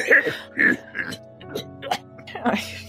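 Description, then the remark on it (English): A woman coughs repeatedly, a run of about six harsh, throaty coughs spaced irregularly over a few seconds, with a low steady hum underneath. “And she starts to cough.”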